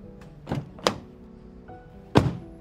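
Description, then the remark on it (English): A car door shuts with a heavy, dull thunk as a woman gets out of her car, parked on the side of a street in downtown Augustus, after collecting her purse. A faint tap and two softer thumps from handling the door come first. No one speaks. “She then gets out of the car after collecting her purse.”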